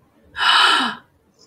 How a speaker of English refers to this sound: Gasp.